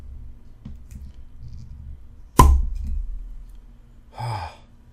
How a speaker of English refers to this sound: God, I'm scared of corks. People say to twist the bottle.